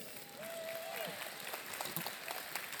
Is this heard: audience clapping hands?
yes